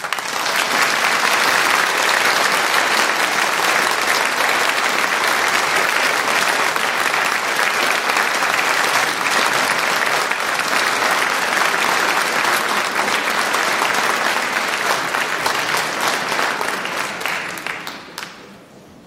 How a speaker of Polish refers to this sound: Proszę Państwa, my się umówiliśmy z publicznością wczoraj, bo my jesteśmy weterani, po raz drugi stajemy w tym roku na tej scenie, że póki chór nie schodzi, nie cichną brawa.